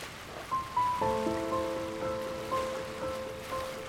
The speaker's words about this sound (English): then just sit and listen to the tides rolling back and forth like a symphony of the night